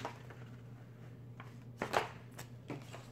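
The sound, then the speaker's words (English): Adhesive backing paper is peeled off a piece of chrome film cut to fit a laptop, in a few short, crinkly bursts of rustling, the loudest near the middle, over a steady low electrical hum with no talking. “We're gonna peel the backing off.”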